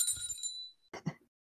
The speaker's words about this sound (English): Ring the bell. Oh, yeah. Don't ring the bell. Ring the bell.